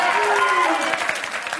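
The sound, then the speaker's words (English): A crowd applauding Bernie Sanders' victory in the Michigan primary, dense clapping blended with cheers and a few raised voices, loud and sustained through the whole moment before easing slightly at the end. “I think I know why this crowd is happy, because Bernie Sanders had a huge victory Tuesday in the Michigan primary, the biggest comeback ever.”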